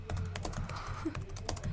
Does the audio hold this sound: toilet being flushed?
no